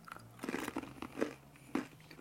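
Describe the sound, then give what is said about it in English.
Sea salt and balsamic vinegar crisps being crunched in the mouth: a run of sharp, crackly bites at an uneven pace, with a couple of louder snaps standing out. No one speaks over the chewing. “Ooh, sea salt and balsamic vinegar. I love them.”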